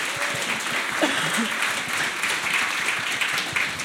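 A steady round of applause from a crowd, dense overlapping hand claps forming a loud, continuous wash of noise that holds evenly throughout, with faint voices murmuring underneath.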